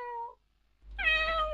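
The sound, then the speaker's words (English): A voice imitates a cat meowing: a short, quieter mew, a brief pause, then a longer, louder, higher-pitched meow, with no other talk. “Beautiful meowing.”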